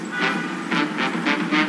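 A train rumbles steadily along the rails, with regular rhythmic bursts of clatter repeating roughly every quarter second over a continuous low roar, fairly loud.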